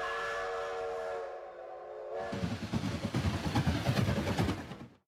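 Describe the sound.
A steady, harmonic train whistle sounds for about two seconds, then gives way to loud, rhythmic chugging and rumbling of a train that fades out at the end.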